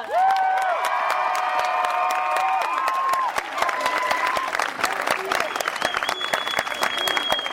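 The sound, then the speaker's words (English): An audience bursts into sustained applause for a speaker from the Standing Rock Sioux Tribe, dense clapping mixed with scattered whoops and high-pitched cheers that rise and fall throughout, staying loud and steady for the whole stretch. “Put your hands together for Ayesha!”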